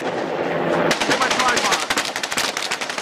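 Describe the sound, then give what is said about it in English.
Rapid bursts of automatic gunfire crackle loudly after a brief moment of muffled background noise, the sharp shots repeating in quick, uneven volleys with a harsh, distorted broadcast quality, from archival news footage of the 1993 ATF raid on the Branch Davidian cult in Waco, where federal agents were killed and wounded. “The gunfire took a heavy toll on the government agents.”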